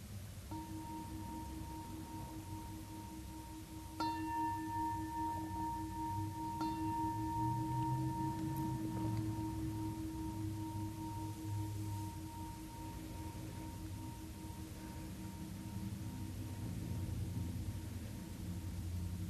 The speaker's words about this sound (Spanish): Van a oír la campana que marca el comienzo de la meditación.